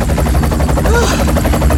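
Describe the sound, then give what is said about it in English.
A helicopter thunders overhead in the middle of the night, its rotor blades beating in a rapid, steady chop with a deep engine roar that fills the whole stretch without letting up. “That bastard helicopter waking everyone in the middle of the night.”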